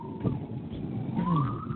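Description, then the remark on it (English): Sirens passing outside, tones sweeping slowly, one gliding down and another rising in pitch, over a steady bed of traffic rumble, fairly loud with no talking. “Here goes those sirens again.”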